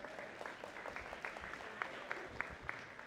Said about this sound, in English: Give him a hand clap. Pretty good.